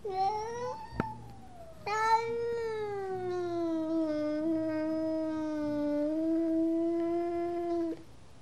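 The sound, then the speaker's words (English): A cat, Bonanza Jellybean, yowls during a fearsome standoff in a long, drawn-out wail, starting with a short cry, then rising into a sustained, wavering howl for several seconds before stopping abruptly. Fairly loud, no talking. “I leave Bonanza Jellybean to her fearsome standoff”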